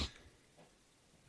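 A quick, breathy sniff as someone smells a beer, with short noisy inhalations at the start and end and near silence in between. No one speaks.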